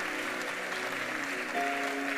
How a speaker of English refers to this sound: Keep coming. And keep clapping as they're coming. Sit down and keep clapping.